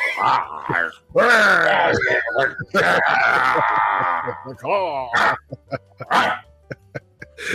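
Loud, close dog-like barking and growling in a rapid run of yelps and snarls, then a few short sharp barks trailing off toward the end.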